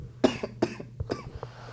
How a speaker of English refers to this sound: Yo, you good, bro? What's going on? I don't know. Ugh, just a cough.